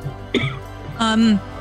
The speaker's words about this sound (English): Well, poor Crabsworth coughs his lungs out.